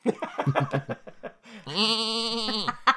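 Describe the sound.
A goat lets out a long, loud, wavering bleat lasting about a second, after a run of short, choppy vocal sounds.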